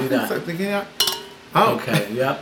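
A single bright clink of drinking glasses tapped together, ringing briefly, with muffled voices murmuring before and after.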